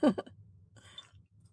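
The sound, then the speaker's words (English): A brief voiced burst, then a short, airy slurping sip of unfiltered, cloudy wine lasting about a third of a second, over a quiet low hum. “hates it when I do this sound when I'm drinking wine.”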